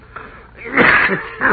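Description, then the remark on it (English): A thin man sitting on the edge of a bed coughs into a bandana in a few harsh, muffled bursts: a long, rough hack followed by a shorter one, with no talking. “All of a sudden, he pulled a bandana out of his pocket and began coughing.”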